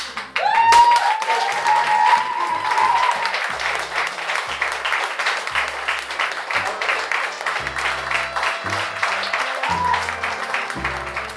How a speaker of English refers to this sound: before a round of applause for Henry